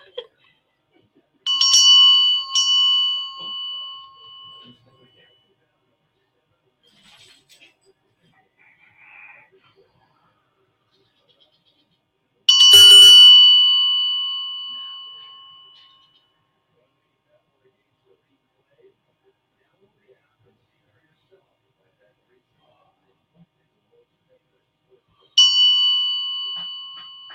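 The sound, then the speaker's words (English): A bright metallic Indian bell is struck three times, well spaced, each strike ringing out with a clear shimmering tone that slowly decays into silence between hits. “So this is the Indian bell.”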